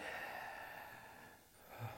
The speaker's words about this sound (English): We just hear you breathing.